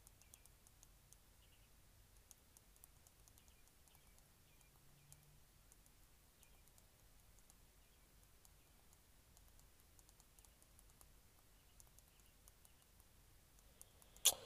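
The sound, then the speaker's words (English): Soft, irregular typing on a computer keyboard, a steady patter of quiet key clicks that comes in bursts over low background hiss, ending with one sharper, louder tap. “Just typing real quick.”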